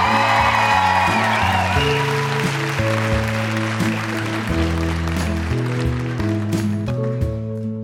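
An audience claps and whoops loudly, the steady wash of applause running the whole time over music with deep, sustained chords and a thumping bass line, applauding a guest's mother who is in the audience at a show.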